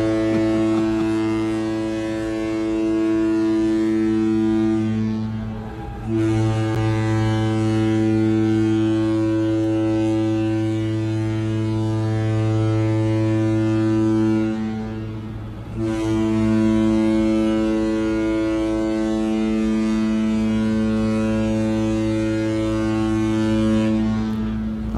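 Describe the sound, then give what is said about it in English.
A cruise ship's deep, loud horn sounds three long blasts as the ship leaves port, each held for several seconds with only brief breaks between them, booming steadily with no voices present. “you'll hear the three horns sounding that we're leaving port”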